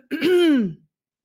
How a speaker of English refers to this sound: Now, before we move forward, we would like you to clear your throat gently one more time, please.